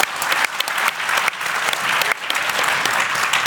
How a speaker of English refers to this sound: Big round of applause for our panel. Thank you, guys. Thank you.